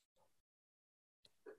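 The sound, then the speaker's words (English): A person sneezes once: a short breathy intake, a pause of silence, then a sudden sharp burst that rises at the end. Fairly loud, with no talking. “So I just sneeze.”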